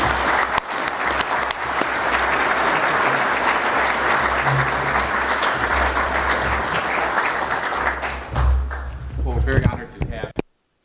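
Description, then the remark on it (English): Sustained applause from a large audience welcoming a speaker up, a dense steady wash of clapping lasting several seconds, then tapering off and stopping abruptly near the end, with faint voices mixed in. “with your warm applause so we can get this started.”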